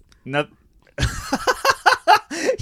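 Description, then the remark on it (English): A single short, low burp, made away from the main microphone and into a phone microphone, sounds near the start. After a brief pause, a longer stretch of loud, choppy vocal sounds follows. “You burped and did it off mic, but you did it into the phone mic.”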